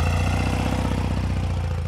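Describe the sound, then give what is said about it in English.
A motorcycle engine idles steadily, a loud, low, rhythmic chugging with a fast even pulse and a faint metallic clatter on top. No one speaks. “Now, let's get this thing fired up.”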